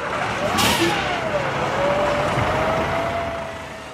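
A bus engine runs steadily as children board buses for a day trip to Tato Park in Meath, Ireland; its broad rumble rises slightly as if revving, with a brief hiss partway through and no voices.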